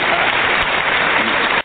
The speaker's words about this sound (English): You give me an applause. That should go to you, bro.